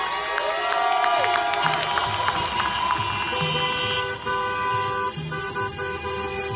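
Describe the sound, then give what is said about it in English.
A long line of cars in a protest procession honks continuously, many horns blaring and overlapping in sustained tones, with crowd cheering and engine noise mixed in throughout. “So instead of marching hand in hand, we join a procession of cars.”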